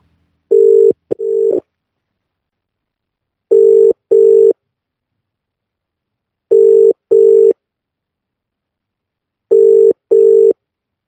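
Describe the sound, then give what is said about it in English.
A telephone rings in the classic double-burst pattern, four pairs of short, steady electronic tones spaced evenly apart, loud, with silence between rings and no voices, before an answering machine picks up. “Sorry we can't come to the phone right now.”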